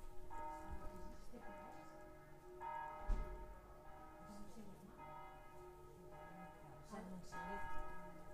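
Church bells peal for mass, struck again and again in an uneven rhythm, their rich, overlapping tones ringing out and lingering over a low, steady background rumble.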